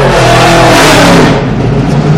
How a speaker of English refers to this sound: Aston Martin, leave it on. That sounded good. Yes, I wish that was our car, that was the Aston Martin.